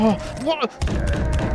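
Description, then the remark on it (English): Heavy thuds and bangs as people bang on a door follow a brief burst of voice, the dull pounding continuing in a rough, muffled series. “They're banging on the door now. They're banging on all the doors.”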